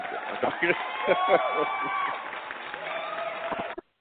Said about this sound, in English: Dude, and you deserve that round of applause there